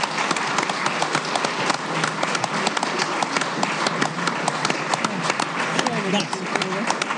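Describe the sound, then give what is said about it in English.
An audience at a live comedy show bursts into steady, dense applause for a comedian, many hands clapping rapidly in a continuous loud wash that holds for several seconds, with faint voices mixed in underneath. “Round of applause”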